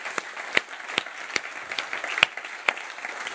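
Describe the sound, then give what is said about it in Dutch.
Audience applause, a steady wash of many hands clapping with scattered sharper individual claps popping out at an irregular rhythm, moderately loud and with no voices over it. “Come on, put our hands together.”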